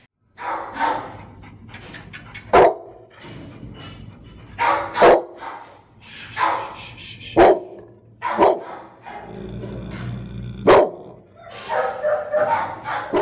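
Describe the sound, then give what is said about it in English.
A cage-shy dog in a cage barks repeatedly in sharp, loud bursts at uneven intervals, with panting and whimpering sounds between barks, and no talking. “Bronson was is that he was cage shy”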